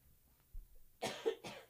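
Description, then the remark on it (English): Two close, forceful coughs in quick succession, the second trailing off, preceded by a soft low thump; no one speaks. “I'm sorry, my cough button once again doesn't seem to be working.”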